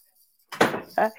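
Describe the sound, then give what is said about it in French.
A door is swung shut: a rushing, scraping sweep ends in a moderately loud thud, followed by a second, shorter knock as it settles. No one speaks. “Donne-moi 2 secondes, on va fermer la porte ici.”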